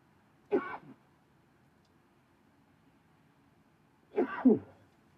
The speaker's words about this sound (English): Excuse me, I had to sneeze.